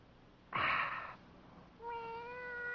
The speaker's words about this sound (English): Oh. Cat?